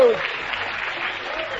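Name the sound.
audience applause and cheering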